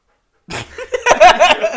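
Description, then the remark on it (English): A female dog makes a strange, breathy panting noise, a run of quick rasping huffs broken by a couple of short squeaky whines. “That's a weird noise from your dog.”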